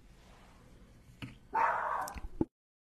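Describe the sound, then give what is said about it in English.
A dog barks, a couple of sharp yaps followed by a longer, louder bark that trails off, all over quiet background noise, then silence. “Sorry about that. My dog wanna show up behind.”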